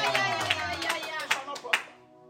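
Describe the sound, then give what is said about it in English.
An audience claps their hands in quick, uneven bursts of sharp slaps over sustained singing or tonal voices, fading out toward the end. “Somebody clap your hands on fire.”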